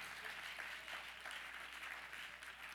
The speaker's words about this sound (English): Yep, you can clap on that. That's a good little clap spot as we close.